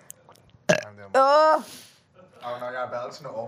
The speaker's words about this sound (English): Oh no, you're belching it up and all.